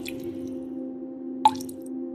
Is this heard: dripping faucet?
yes